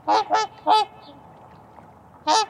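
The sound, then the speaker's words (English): Loud, nasal honking calls from a flock of trumpeter swans, three quick blasts in a row, a pause, then one more, clear with a faint background hiss. “With a voice like that, there's no wondering where trumpeter swans get their name.”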